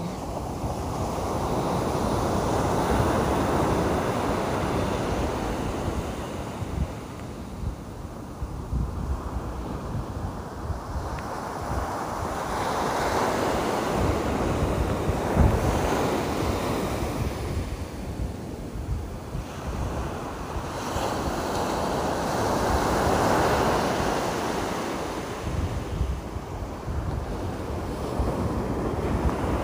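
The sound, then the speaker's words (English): Atlantic Ocean waves wash onto a beach in coastal Carolina on Labor Day, September 5th, in slow, rolling surges that swell and fade every several seconds, with a steady roar of surf, little shorebirds, and some wind buffeting the microphone. No one speaks. “I am at the beach. This is the real sound of the real Atlantic Ocean, punctuated by little shorebirds here in coastal Carolina.”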